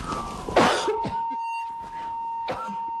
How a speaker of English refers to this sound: I'm sorry, I've been trying not to cough the entire time. The longer you try not to cough, the more it just, you know, it's coming.